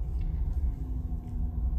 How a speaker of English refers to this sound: Traffic is spicy out today, my friends.